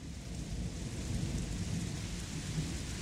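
Heavy rain pours down in a steady, unbroken roar, with a deep low rumble beneath the hiss of the water and no voices.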